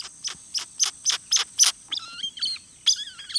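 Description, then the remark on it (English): Groove-billed Ani calls: a quick series of about six sharp, high whistled notes, followed by slurred, whining whistles and squeaky notes, clear with no talking. “The ani's large, flattened bill spits out these sharp, high whistles, slurred whinings, and various squeaks, pips, and growls.”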